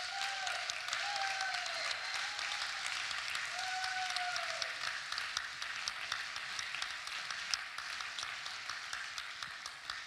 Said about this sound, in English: We're just going to give you a clap.